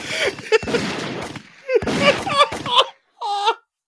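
Sharp gunshot-like bangs crack out in quick succession, each with a noisy decay, mixed with wailing, crying voices before everything cuts to silence.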